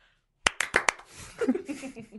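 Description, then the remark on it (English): Four sharp hand claps in a quick, even rhythm, imitating the clapping in a TV sitcom theme song, done to applaud someone after his report, followed by a voice beginning to speak. “We should applaud him in an appropriate manner.”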